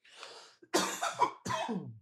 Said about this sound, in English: Excuse me. I remember that's all we heard in 2020. Somebody cough. Stay your ass over there.